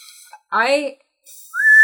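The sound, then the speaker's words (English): A person whistles by drawing air in: first a short, breathy, wavering tone sliding downward, then after a brief pause a clear, thin whistle that rises slightly and holds, fairly loud. “I have to suck in. I can't blow.”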